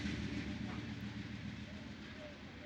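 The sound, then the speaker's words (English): A train rumbles past, a steady low drone with a broad noisy wash that holds at an even level for the whole moment, somewhat muffled. “Little cameo by the train.”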